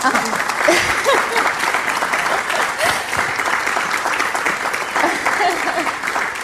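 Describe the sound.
Steady, sustained applause from an audience giving a big round of applause in thanks to a helper, a dense wash of many hands clapping at an even level for several seconds, with a few faint voices mixed in beneath it.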